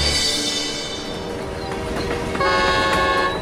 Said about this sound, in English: The X8308 train arriving from Nuremberg might give us some answers. It's almost mind-blowing that this has come from Germany. To reach China, this train has had to travel more than 10,000 kilometers